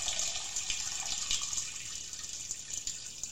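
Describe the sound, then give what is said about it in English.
A steady stream of liquid trickling and splashing, like someone urinating or a tap running into a tub, continuous with no voices. “Are you pissing on my floor? Oh. Is that the bathtub?”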